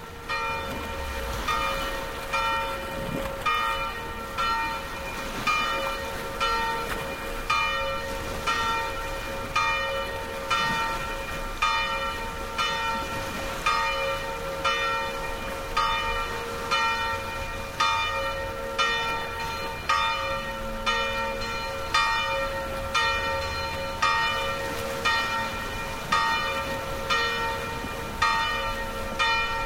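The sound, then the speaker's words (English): Noontime bells from two churches ring steadily in a small village on a rocky shoreline along the south coast of France, Baume-les-Mimosas. They sound a continuous series of bright, resonant strikes in a regular rhythm with overlapping tones, heard clearly with no voices. “Stephen Feld set up his microphones there to record the noontime bells from two churches.”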